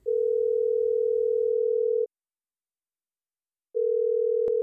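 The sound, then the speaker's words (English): Telephone ringback tone over the line while calling a former Rhode Island State historian: a steady electronic hum that lasts about two seconds, pauses in silence, then starts a second ring that is cut short. “Oh, it's ringing.”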